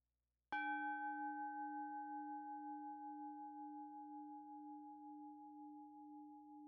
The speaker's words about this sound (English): Now let's invite the bell and begin.